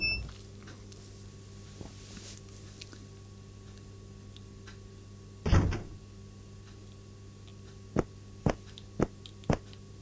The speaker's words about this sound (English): Oh yeah, it was a big brown door, wasn't it? Don't need a key for... There we are. You unlock the door with a key.